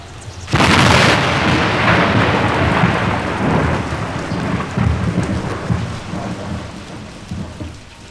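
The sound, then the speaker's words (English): A sudden thunderclap cracks loudly and rolls into a long, deep rumble that slowly fades, while steady heavy rain hisses underneath throughout. No voices are present. “I said, sure looks like it's gonna rain.”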